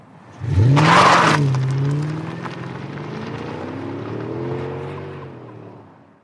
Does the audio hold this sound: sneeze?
no